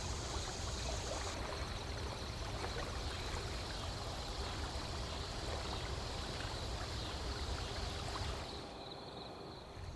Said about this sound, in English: Wide, bright eyes trained on the gently moving water.